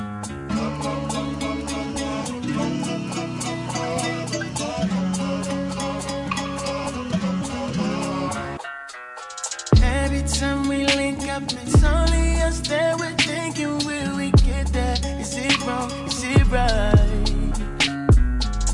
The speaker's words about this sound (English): This is a hot sample. I like everything about this song.